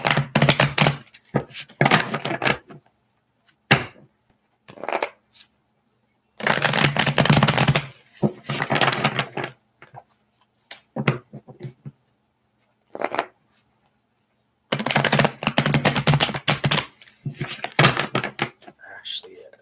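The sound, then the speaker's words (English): A deck of tarot cards is shuffled in three or four long, crisp riffling bursts, separated by brief pauses and a few quick taps. “One more shuffle, actually.”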